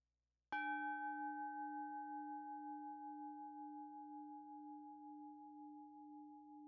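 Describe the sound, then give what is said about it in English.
A meditation bell is struck once to begin a meditation practice and rings on alone for several seconds, its mellow low tone and brighter overtones slowly fading with a gentle wavering shimmer. “Now let's invite the bell and begin.”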